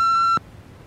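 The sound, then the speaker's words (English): A single steady electronic beep from an answering machine tape, about a third of a second long, sounds clearly and then cuts off abruptly, leaving faint background hiss. “I think maybe it's an answering machine tape.”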